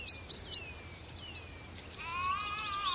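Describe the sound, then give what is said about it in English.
A willow warbler sings among sunlit oak and ash trees, a quick run of sweet, high notes that slide downward, with other birdsong, including tree pipits, layering in and growing louder toward the end. No one speaks. “I can see a willow warbler.”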